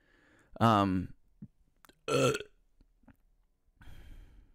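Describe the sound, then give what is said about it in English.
Two loud, deep burps about a second and a half apart, each a short rumbling croak, followed by a softer breathy exhale. “I feel bad when I burp now.”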